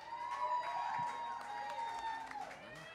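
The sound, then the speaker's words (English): An audience at a live music performance claps and cheers steadily for the performers, a dense wash of overlapping applause with shouts and voices mixed in, fairly loud and continuous throughout. “Let's give one more round of applause for these boys right here, and then I'm going to sing one for y'all.”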